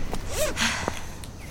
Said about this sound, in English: can't be a sound design category without footsteps.